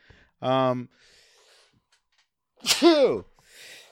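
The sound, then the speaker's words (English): A single loud sneeze: a short voiced intake of breath, a brief pause, then a sharp explosive burst that trails off into a softer exhale. “Bless you.”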